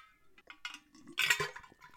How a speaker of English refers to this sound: Ice cubes in a water bottle.